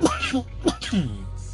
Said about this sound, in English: Even if you want to make fun of me for coughing during the podcast, you know.